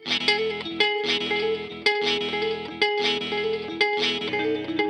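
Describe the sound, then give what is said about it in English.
A processed, effects-heavy guitar phrase, played through a micro looper with delay and reverb effects, loops over and over in a steady rhythm, each pass cut by a brief gap. The tone is dense and loud, washed in reverb, with no voices. “So on the right-hand side here, it's a micro looper.”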